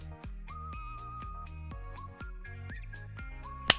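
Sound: hand clap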